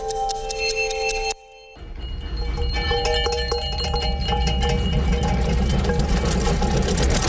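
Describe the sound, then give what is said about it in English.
A train from the film The Polar Express rumbles steadily, with a bright, multi-toned sound at the start that breaks off into a brief silence, then a continuous low engine roar and hiss that carries on to the end. “Yeah, it's a train.”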